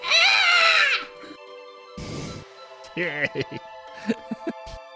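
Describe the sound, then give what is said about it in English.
A voice lets out a loud, piercing, strained shriek, imitating a demon screaming as it is slashed down its back with fire spraying out, lasting about a second, then quieter speech-like vocal sounds follow. “And it screams out.”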